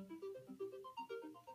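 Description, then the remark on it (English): A timer alarm goes off, playing a bright electronic melody of quick stepping notes that rise and fall in pitch, steady and fairly loud, with no one talking over it. “Hold on. I have a timer going off.”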